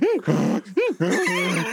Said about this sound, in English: So the donkey seems funnily unwilling to go through the mysterious portal. He's freaking out.